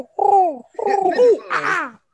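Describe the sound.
A person imitates a pigeon's coo with three throaty, drawn-out hoots in quick succession, fairly loud, the last one rising higher and breathier.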